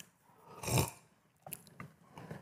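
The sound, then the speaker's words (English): A quiet wet slurp of water is followed by a few soft gulping clicks as a speaker takes a drink of water and swallows, with no one speaking. “Sorry, I'm just going to grab a drink of water here.”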